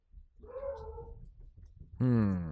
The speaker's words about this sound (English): Yeah. Dogs in the background.